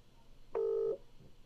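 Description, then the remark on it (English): A single steady telephone keypad tone, made while phoning someone, sounds clearly for about half a second, a bright electronic beep standing alone over faint background hiss. “Let's give her a call. Call in Sharon Bolan.”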